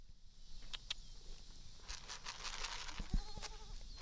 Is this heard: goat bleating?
yes